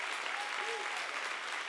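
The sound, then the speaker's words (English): A church audience claps their hands for the dream team in steady, dense applause, a broad crackling wash of many hands that stays loud and even throughout with no voices standing out. “Can we clap our hands for the dream team who held it down while we were gone?”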